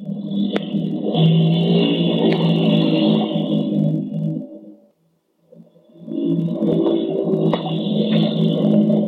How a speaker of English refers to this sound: I only hope the sound of the engine will drown out our motor.